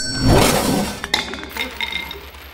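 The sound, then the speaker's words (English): A cash register, with nobody within 10 feet of it, clatters with a rushing, jangling burst, then gives a sharp bright ring followed by a few lighter metallic chimes that ring on and fade. No one speaks. “Nobody was within 10 feet of that cash register, and it just...”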